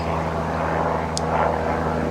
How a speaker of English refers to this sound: Hey, airplane, cool it, will ya? Trying to do a podcast.